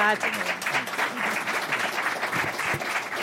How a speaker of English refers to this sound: Well, you have preempted me with your applause, but let me join you, I suppose, in thanking